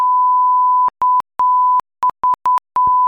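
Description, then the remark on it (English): A loud, pure censor bleep plays on its own: one long held tone, then a quick run of shorter, choppy beeps of uneven length with brief silent gaps between them. “there's a lot of beeps on the Murder House podcast”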